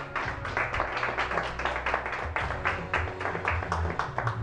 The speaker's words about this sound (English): If you receive that this morning, just give God a hand clap of praise this morning.